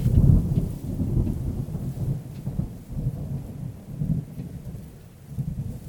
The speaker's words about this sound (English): He pauses to catch his breath, basking in the last bit of sunlight before it disappears behind the storm and the last thunderous rumble that appears to call out for him to come back.